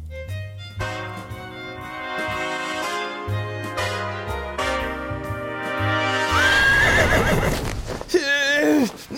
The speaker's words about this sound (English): smacked the first horse on the rump and it took off.